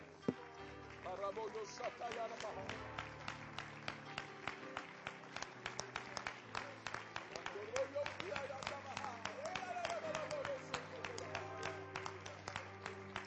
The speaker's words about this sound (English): Can we clap our hands to the Lord today?